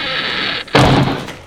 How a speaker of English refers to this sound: so we'll replace it in the edit with the sound of an older, more characterful door, to suggest my stepping through a portal into the past.